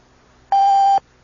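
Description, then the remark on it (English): A single steady electronic beep, about half a second long, sounds loud and clear over near silence, with a pure tone and faint harmonics: the radio time signal on WOR New York marking exactly 8 o'clock. “At the time signal, exactly 8 o'clock, here's John Scott with the news.”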